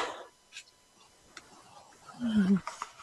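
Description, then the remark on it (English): A person yawns loudly during a session: breathy air at first, then a drawn-out, low, groaning vocal swell that rises and fades near the end, with no talking. “Me yawning my head off.”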